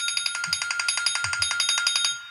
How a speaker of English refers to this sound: I think that's my buzzer, so I've stopped talking.